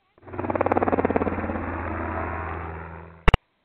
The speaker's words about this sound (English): Well, the sight and sound of those helicopters overhead might be one thing wrong. They tell me that things might not be as sunny as they seem on this beautiful June morning.